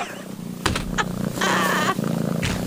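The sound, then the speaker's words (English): A cat purrs while being petted, a steady low rumble that carries through the whole stretch, with a few brief breathy bursts and rustles on top. “It's not growling. It's purring.”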